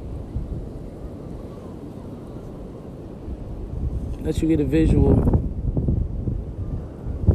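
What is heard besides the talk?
ocean waves roaring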